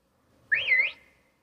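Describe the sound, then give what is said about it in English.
A single short, clear whistle from someone whistling to call for attention, swooping upward, dipping, and rising again before trailing off against an otherwise quiet background with no talking. “But someone keeps whistling for me.”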